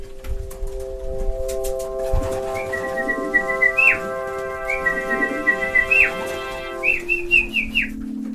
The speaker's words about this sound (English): shouting and whistling to keep them airborne, because that's their training. And these guys around the neighborhood would see me sitting on the roof with my flag, and that's calling these birds.